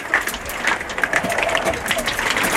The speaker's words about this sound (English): Can you hear this hail? Bad.